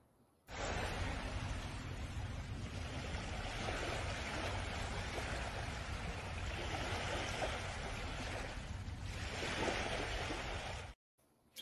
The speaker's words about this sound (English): How do you have that much water coming into your property?